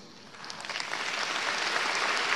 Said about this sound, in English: Clap for Jesus.